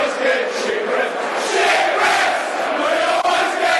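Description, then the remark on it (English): A football crowd at a Lions match reacts to player Lee Gregory with a loud, sustained roar of many voices, steady and dense throughout with no individual speech standing out. “So that's what the crowd think of him.”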